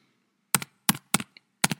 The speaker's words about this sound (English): Disregard those keyboard clicks.